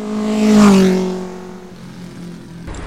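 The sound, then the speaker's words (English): The engine of a small, compact Toyota Aygo X car hums past on city streets, swelling quickly to a loud peak before fading into a steady drone, with no one speaking. “But first of all, the car I'm trying out this week is a Toyota Aygo X.”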